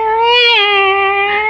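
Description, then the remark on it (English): A cat lets out one long, drawn-out meow, loud, holding a steady tone for over a second with no other sounds or voices around it. “Be quiet, cat.”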